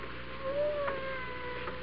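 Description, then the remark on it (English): A single faint, thin cat meow, drawn out and slightly rising in pitch, heard alone over a soft background hiss with no one talking. “I hear a cat. He must be right in this room, but I don't see him.”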